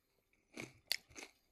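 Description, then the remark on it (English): Loud crunching of barbecue-flavored chips from a 100-calorie bag being chewed, three sharp bursts spread over about a second with brief pauses between bites, no talking. “I mean, the whole bag is 100 calories, got a high barbecue flavor, good crunch.”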